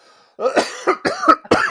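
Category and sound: human body sound, coughing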